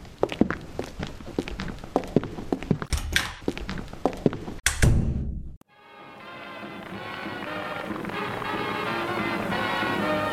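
The footsteps of two people leaving a building tap along in a quick, uneven rhythm, ending in a heavy thunk like a door. A brief silence follows, then a steady, gradually swelling background wash with faint tonal hum.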